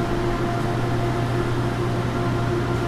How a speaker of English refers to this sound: Finally, the remaining water from the clarifying tanks is treated with UV light. So we have two channels. We typically only use one unless we get high flows. Then we'll put two. Yeah, this is UV disinfection.